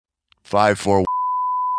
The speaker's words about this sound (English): Did you just give his phone number? We got to beep that.